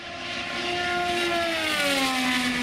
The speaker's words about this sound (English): That is the vehicle, the car. Is that pretty sad that my head is actually turning as if I'm watching the car go by me?